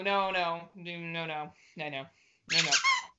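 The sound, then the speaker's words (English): A squeaky sex toy squeezed four times in quick succession, each squeal drawn out and wavering in pitch, loud, with brief pauses between squeezes. “She's playing with the squeaky dildo again.”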